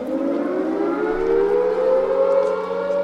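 Air raid sirens wail steadily across a city, a loud continuous rising tone with layered harmonics and an echoing spread, with no voices over it.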